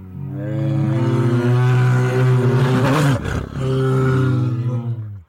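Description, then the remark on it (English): A bear growls in a loud, deep, rumbling roar, held in two long drawn-out bursts with a brief ragged break between them, and no voices. “She rose up and growled and chased the whole pack of trolls, both great and small, out of the house.”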